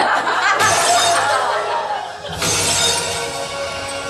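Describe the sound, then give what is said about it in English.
Two loud crashes of breaking glass, a couple of seconds apart, each bursting into a bright, clattering spray of shards that rings on and fades slowly before the next one hits. “Breaking the glass ceiling”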